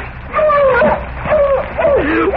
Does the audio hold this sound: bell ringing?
no